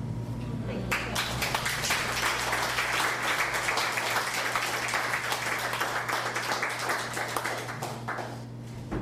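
An audience applauds steadily for several seconds, a dense crowd of hand claps building quickly and holding at a strong, even level before tapering slightly at the end, with a low hum underneath.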